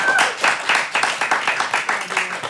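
A quiz crowd applauds the team Glazed and Confused, who have won 33 points, with steady, fairly loud clapping, many hands beating in a quick, slightly uneven rhythm that holds strong throughout the short burst.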